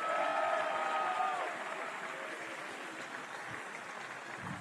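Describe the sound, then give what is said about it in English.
Kansas State University alumni and friends at a bowl game gathering applaud themselves, a dense, continuous wash of steady clapping, with a brief higher tone over the first second or so, then the clapping settles and holds at a fairly even level. “So give yourselves a nice round of applause if you would.”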